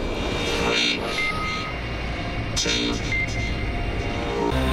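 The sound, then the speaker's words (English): A loud, steady roar of several Porsche race cars starting their flat-six engines at Sebring before the second race of the Porsche GT3 Cup Challenge USA by Yokohama, a dense mechanical drone with brief surges and revs layered on top, no voices. “Drivers, start those flat six engines, we're about to go racing.”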